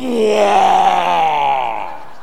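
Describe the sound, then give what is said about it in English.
A voice imitates the night call of small frogs, not bullfrogs, with one drawn-out, moaning tone about two seconds long, its low pitch sliding gently downward and fading at the end. “how is that little frog making that noise?”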